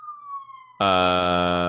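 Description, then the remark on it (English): A police siren wails on a single falling tone, then abruptly bursts into a loud, harsh, blaring blast that holds steady, with no voices. “Sirens on my end.”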